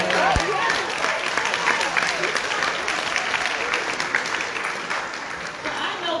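A large audience applauds steadily, a dense wash of many hands clapping at once that holds at an even, loud level for several seconds with no voices standing out.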